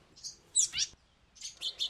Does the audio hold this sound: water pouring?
no